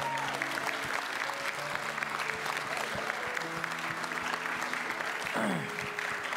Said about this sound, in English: Can we give those adults a round of applause?